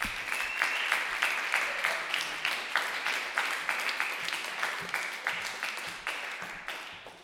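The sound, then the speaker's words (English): An audience at a comedy show applauds steadily for several seconds as the second comic of the evening is introduced, dense overlapping claps forming a continuous wash of sound with a rhythmic pulse, fairly loud, with no talking over it. “Hey, start clapping right now for”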